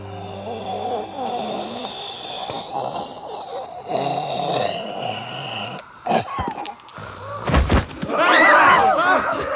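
A plague pig in a film scene grunts and snorts in rough, repeated bursts, punctuated by a couple of sharp thumps, ending in louder, higher squealing snorts.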